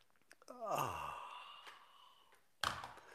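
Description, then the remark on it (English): A quick sip of coffee, a couple of small clicks, then a long, satisfied "ahh" that slides downward in pitch, followed by another short breathy exhale. “It's called the simultaneous sip, heard around the world, and it happens now.”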